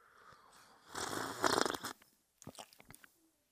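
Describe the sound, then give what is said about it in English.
A noisy slurping sip of a hot drink lasting about a second, followed by a few quick, soft gulps or mouth clicks, with no talking. “One sip, and I'm fucking golden.”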